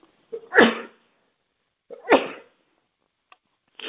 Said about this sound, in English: I'm going to sneeze.